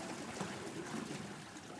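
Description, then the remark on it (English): Water trickles and laps steadily around a boat slowing down as it turns into a side canal off a river, a soft continuous wash of moderate sound with no voices. “The boat starts to slow down and turns into a side canal off the river.”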